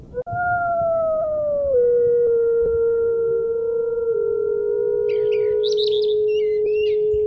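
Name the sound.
wolf howling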